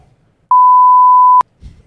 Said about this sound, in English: No. Oh, no, that's my buzzer.